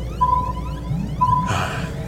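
An electronic alarm beeps while the iron lung is knocked around: two long, steady high-pitched beeps with a short gap between them, over a low droning rumble, before a rough burst of noise washes over the end.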